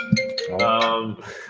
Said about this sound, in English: That wasn't me. Why is your phone ringing?